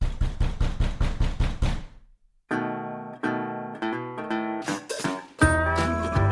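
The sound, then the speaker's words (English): A rapid series of about eight firm, evenly spaced knocks on the front door of a house, followed after a brief pause by sustained electronic music tones. “At the same time that we were getting ready to leave, there was a knock at the front door to my house.”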